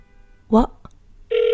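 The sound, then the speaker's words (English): A brief voiced sound and a small click, then a steady, fairly loud phone ringing tone starts up at the end, as an outgoing call to the caller's mom connects and rings. “I'm just calling my mom.”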